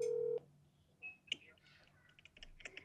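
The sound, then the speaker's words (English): A phone being dialed to call MC Hammer: a steady tone cuts off, then quiet clicks and a run of short, high touch-tone beeps, all fairly faint with no talking. “If he don't pick up, he don't love me.”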